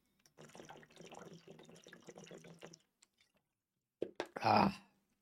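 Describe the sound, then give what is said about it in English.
Water pours steadily for a couple of seconds, fairly clear, then stops; after a short pause come a few quick gulping or swallowing sounds. “Let me get some water here.”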